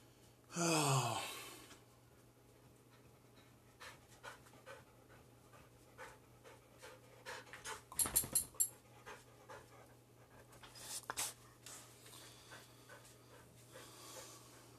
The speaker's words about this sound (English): And my dog is crying again.